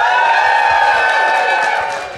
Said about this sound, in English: If you like my park thing, cheer as loud as you can.